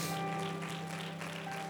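An audience claps their hands to the Lord in praise of God, a dense, steady wash of many hands at an even loudness throughout, with sustained organ-like tones humming underneath.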